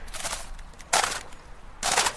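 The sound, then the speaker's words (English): Several sharp, crunchy impacts as a fishing cast lands on very thin ice in cold weather: three bright, crackling bursts with a brittle, almost metallic bite, separated by short quiet gaps, no voices. “There you go, splosh cast, crunch cast.”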